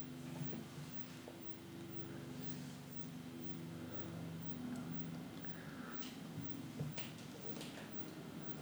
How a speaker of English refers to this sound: There's a plane flying overhead. I'm sure you can hear.